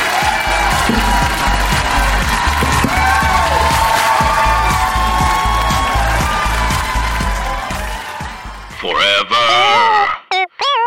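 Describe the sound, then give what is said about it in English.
A live audience in New York cheers loudly, a dense continuous roar of shouting and clapping, ending with a few high, wavering whoops rising out of the crowd before it cuts off. “Thank you, New York. Greatest crowd ever.”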